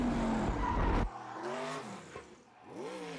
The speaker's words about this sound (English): A drift. It's not even really a drift car. Like that, what is, like, that's the thing about this car specifically. It's like, what is this car for? It's just for this.